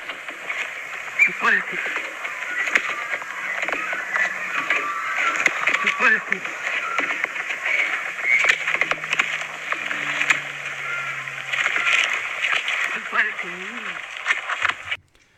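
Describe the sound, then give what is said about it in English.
A duck mimics a human voice, producing gruff, speech-like warbling phrases that sound like "You bloody fool" over steady hiss and crackle, with a few low droning tones underneath, for about fifteen seconds. “Okay, so praise silence as we hear the duck say, "You bloody fool."”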